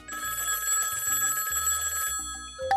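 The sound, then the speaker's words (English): The Grabstack Radio Show phone line rings continuously and loudly for a few seconds, a telephone bell with a bright, rattling metallic tone and no voices, ending abruptly. “Let's take this one to the Grabstack Radio Show phone line.”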